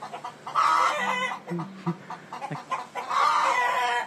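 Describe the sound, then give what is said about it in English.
A hen cackles loudly and insistently after laying an egg, followed by a rooster mimicking her with a similar drawn-out squawking call, the two bursts separated by softer clucks, loud with no talking. “when a hen lays an egg, mm-hmm. she starts fucking yelling out, and the rooster is pretty much mimicking her”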